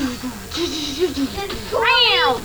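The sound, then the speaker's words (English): A single loud, drawn-out meow from Corey the cat rises and falls near the end, clear, following a stretch of low, voice-like murmuring. “Corey the cat is in the lead.”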